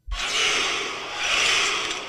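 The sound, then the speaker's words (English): A voice imitates the warrior battle cry from the film 300: one sustained, strained shout lasting about two seconds, loud and raspy, swelling slightly midway before trailing off. “The 300 noise.”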